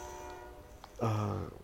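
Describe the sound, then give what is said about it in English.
A train horn sounds from a passing train, a steady tone that swells into a loud, sustained blast midway through, with no voices. “God damn it, fucking train, dude.”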